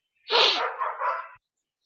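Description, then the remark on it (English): A dog lets out one loud, drawn-out bark lasting about a second, then silence. No one speaks. “I hey, doing a show here. The doggy is not cooperating.”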